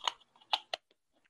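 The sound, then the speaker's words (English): A small brush scrapes quickly across a grinder's kief screen in three or four crisp, scratchy strokes, fairly quiet, with faint ticks trailing off at the end, cleaning out the kief catcher and pushing material through it. “I give it a little brush.”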